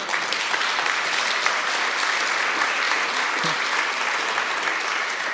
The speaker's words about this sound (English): And it's great we can clap for them because they're gone.